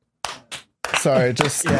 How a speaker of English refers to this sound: That deserves like a little clap. Yeah, there it is. That was the little clap right That's there. That's it.